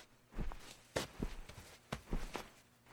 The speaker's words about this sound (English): Someone's coming up the stairs.